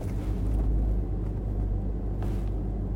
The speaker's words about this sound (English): The hell's with all these damn cars, honey?